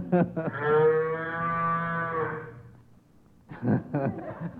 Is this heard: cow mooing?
yes